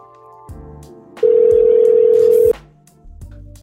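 A phone call from a phone paired to a mixer rings through a speaker as a loud, steady electronic tone, one sustained burst lasting just over a second, with soft background noise before and after and no talking.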